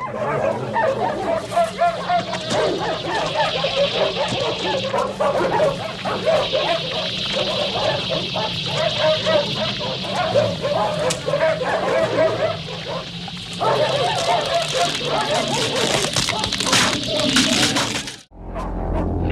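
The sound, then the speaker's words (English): A dog whimpers and yelps in distress almost continuously, loud, as it is hosed down with a steady hissing spray of fluid that runs for nearly the whole stretch before cutting off abruptly. “We learn later, and that poor dog is just getting hosed down with that. Yeah, feels so bad for that dog.”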